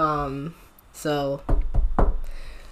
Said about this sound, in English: Knock on wood.